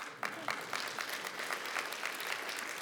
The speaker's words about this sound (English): can we pay the rest of that money and get them that land? That's worth a clap.